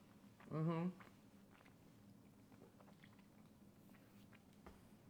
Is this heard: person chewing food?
yes